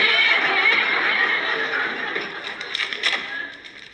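A loud, drawn-out horse whinny, shrill and quavering, fading off into a final high, wavering tail. It fills the whole few seconds, with no talk over it.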